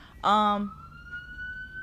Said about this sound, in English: Y'all might see me getting distracted right now because it's something going on outside. This is the most I've heard sirens, and I'm low-key nervous. It stopped. But that was low-key weird.